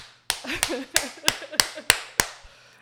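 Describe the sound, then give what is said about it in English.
Six sharp, evenly spaced hand claps ring out at a brisk steady rhythm, like a one-person round of applause, with a voice murmuring faintly underneath. “No, let me just like an applause track.”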